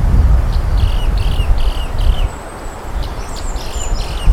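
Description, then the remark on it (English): A bird squawks repeatedly in short, harsh calls over a steady low rumble of wind or outdoor background noise. “What the hell is that bird?”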